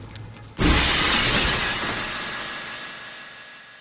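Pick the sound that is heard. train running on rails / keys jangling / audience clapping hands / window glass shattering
window glass shattering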